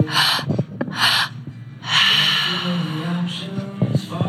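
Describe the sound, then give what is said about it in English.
Deep, forceful breaths in a quick rhythm during a guided belly-and-heart breathwork exercise: sharp gasping inhales alternate with longer rushing exhales, fairly loud, with no talking. “Belly, heart, exhale. Stay at your own pace. Keep breathing.”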